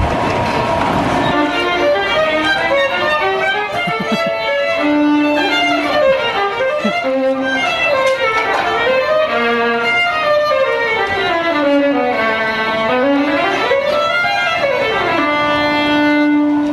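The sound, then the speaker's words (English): Joshua busking in the subway: music with sustained notes that slide and swoop up and down in pitch, played loudly and continuously without a break and with no voices over it. “wouldn't it be interesting to chuck Joshua into the subway and see how he goes busking?”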